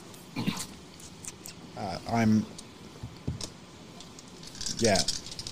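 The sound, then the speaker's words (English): Dice clatter and rattle in short bursts as they are rolled and tumble across a table, with brief voiced sounds from people in between. “My dice. Try that again.”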